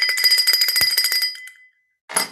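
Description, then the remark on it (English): A hand bell rung rapidly and continuously for about a second and a half, bright and loud, then it stops before one more short burst of ringing. “I can't stop ringing it. I love the bell.”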